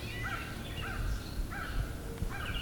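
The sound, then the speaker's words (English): Crows caw repeatedly, about four harsh, raspy calls spaced unevenly over a steady low background rumble, with no one speaking; a crow is being chased by an eastern kingbird. “Crows.”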